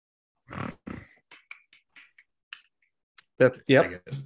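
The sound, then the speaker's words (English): A person vocally imitates the Predator alien: two rough, growling snarls, then a scattered series of soft, sharp mouth clicks, ending in two louder guttural snarls. “Was that some clicking and snarls?”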